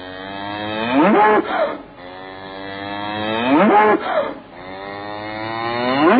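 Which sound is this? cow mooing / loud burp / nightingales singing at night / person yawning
cow mooing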